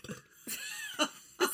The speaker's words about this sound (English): Let me burp first.